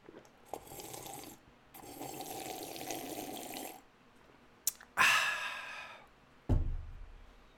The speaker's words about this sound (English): I'm gonna take a sip of this Tucci while you reflect on that.